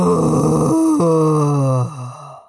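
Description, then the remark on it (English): A voice imitates the roar of a big, scaly red dragon perched on the ridge of a volcano at night, a long, loud, growling groan that shifts down in pitch in steps before trailing off, with no other talking. “It perched on the ridge, and it appeared to look around and sniff the ground, and then it roared out into the night.”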